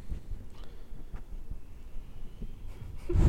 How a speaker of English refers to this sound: That was him breathing.